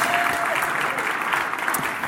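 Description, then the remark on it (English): A crowd claps steadily, a dense, even wash of many hands clapping at once with no gaps, holding a loud, constant level from start to finish. “And I thought that should be worth a Thanksgiving and an applause for them as well, just for bringing an awesome gift down to our friends on the streets.”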